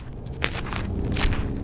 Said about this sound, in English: This is me walking right through the middle of the river in downtown Tucson. It's just dry sand, no water. That's me kicking some trash. There's a lot of trash in the riverbed, like soda cans, plastic bags, maybe even a shoe or a grocery cart.